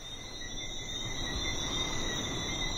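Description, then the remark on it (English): A dense chorus of small frogs trills steadily at night on a Caribbean island, high-pitched and continuous, layered over a soft low rumble of breeze with no voices. “There's just the sound of the breeze and these little frogs that come out at night and chorus all over the island.”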